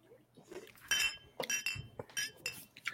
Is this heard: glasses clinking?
yes